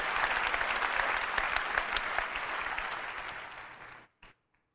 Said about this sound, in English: And look at the dorks clapping. It's unreal.